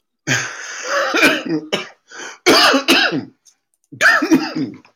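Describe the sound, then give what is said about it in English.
Someone coughs and clears their throat in a loud, rough fit, several raspy bursts coming in quick clusters with a brief pause before a final round of hacking. “Yeah, I guess breathing is something that's challenging.”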